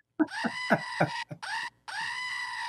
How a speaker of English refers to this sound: I'll give you a little goat noise too.